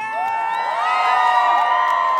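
Loud, sustained audience cheering at a concert, a dense wash of crowd noise with high-pitched screams and whoops rising and falling throughout, steady in volume with no speech.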